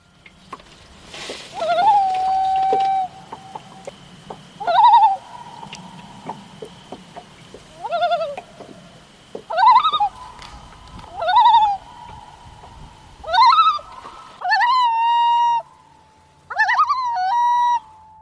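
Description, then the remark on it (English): A common loon calls again and again, each loud, wavering note swooping upward and then holding steady, repeated about eight times in a rhythmic series over a faint low rumble, with no voices. “The following sound is that of a common loon, the bird that Mark mentioned several times in his account.”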